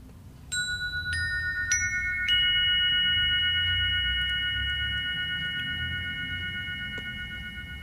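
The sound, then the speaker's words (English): Resonant chimes, partly created by Eric Rankin of the Sonic Geometry series, are struck in four quick successive strikes. Their bright overlapping tones ring out and sustain steadily over several seconds with no voices present. “I hear there's some beautiful chimes in the background we're going to open with.”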